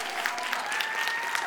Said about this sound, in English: My beautiful bride coming down the aisle. Y'all clap it up for my bride.